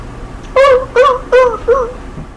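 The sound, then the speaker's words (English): A puppy whimpers four times in quick succession, each a short, high, whiny cry with a slight waver, fairly loud over a faint low background hum. “So, this episode is Even Marley's Not Safe in Nowhere, where we attack a puppy.”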